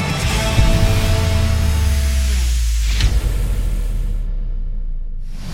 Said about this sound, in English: As I start, Matt, my air conditioning turns on.